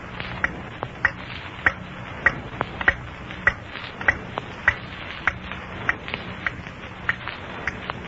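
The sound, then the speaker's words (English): A clock ticks steadily with crisp, evenly spaced ticks, about two every second, clear against a faint low hum, with no voices. “I wish I could stop listening in the dark, waiting for that clock to strike 9.”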